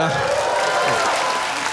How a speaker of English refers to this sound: You don't have to clap.